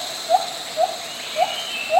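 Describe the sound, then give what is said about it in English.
A white-handed gibbon, a type of small ape, sings a steady series of four short, rising whoops, evenly spaced about half a second apart, mid-pitched and clear above a soft hiss, with no talking. “That's the sound of a white-handed gibbon, a type of small ape.”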